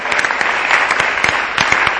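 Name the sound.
audience clapping hands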